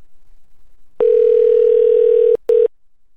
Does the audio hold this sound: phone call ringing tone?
yes